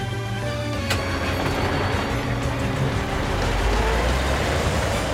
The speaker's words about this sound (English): Carl drives through the streets. Oh, wow. There are so many cars.